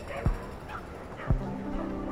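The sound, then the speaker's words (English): Dogs barking and yipping on a city street where a dog walker is walking eleven dogs, two sharp barks standing out with softer yips and whimpers around them over steady background hum. “A dog walker, walking 11 dogs?”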